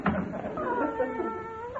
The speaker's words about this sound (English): Stop drinking those pine needles, Minerva. Come on over here. That's a good kitty.